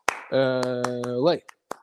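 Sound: rhythmic hand clapping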